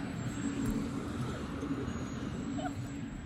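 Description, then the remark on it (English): A truck rumbles past outside, a steady, muffled low drone that holds for a few seconds at moderate volume with no voices over it. “I feel like me visiting Charlotte, it's another truck, God damn.”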